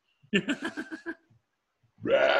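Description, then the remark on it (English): A throaty burp rumbles out in a quick series of pulsing bursts, then after a short pause a second loud, raspy belch starts up and runs to the end. “I can't stop burping, so I'm gonna go catch a fish and eat some dinner.”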